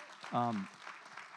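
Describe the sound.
A church audience claps hands for their pastors in a steady, dense patter of soft, overlapping claps, with a short voiced cheer rising above it early on before the clapping continues.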